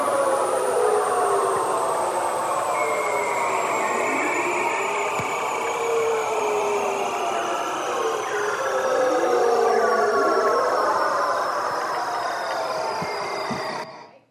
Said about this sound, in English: I heard krill, and which it's not, and whales, which it's not. Also not beluga. Also not a bird. It is seals. That was this guy's mating call.